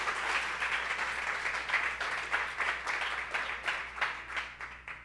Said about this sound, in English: That's your cue to clap right there.